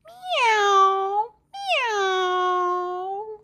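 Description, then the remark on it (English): Two long, drawn-out meows in a row, fairly loud, each sliding downward in pitch, as a voice imitates a cat. A brief pause separates them, with nothing else in the background. “I took a walk to town one day and met a cat along the way. What do you think that cat did say?”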